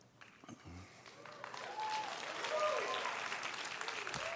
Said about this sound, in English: They're clapping. They just like, they clap.